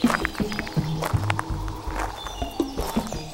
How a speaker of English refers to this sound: Not a sound, except for the birds that sing and the gravel that rolls under our feet.